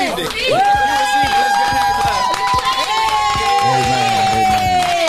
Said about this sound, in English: If you received that, let's get a hand clap.